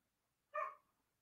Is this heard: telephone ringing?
no